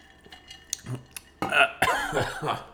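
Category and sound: human body sound, coughing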